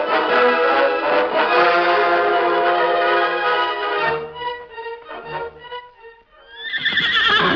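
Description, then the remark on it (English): A horse coming down a trail whinnies loudly in a long, ringing neigh that breaks into stuttering snorts, then a second whinny rises at the end. No one speaks. “Look, Toto, a horse coming down the trail.”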